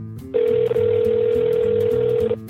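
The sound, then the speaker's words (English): A single steady ringback tone on an outgoing phone call, heard through a thin telephone line, holding for about two seconds before cutting off, with faint line noise around it. “When I phone the Vatican switchboard again, the operator directs me to the Secretary General of the Diocese of Rome.”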